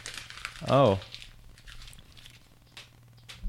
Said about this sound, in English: You just hit me with a piece of paper? Yeah, it's rude as hell.